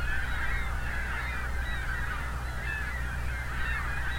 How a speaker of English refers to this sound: It's got maybe 500-600 gulls.